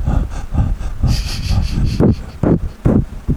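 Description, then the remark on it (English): Breathing into a microphone: a run of loud, breathy puffs and rushes of air, roughly one every half second, with a low rumbling buffet and hiss and no clear words. “Is that me breathing? I think so.”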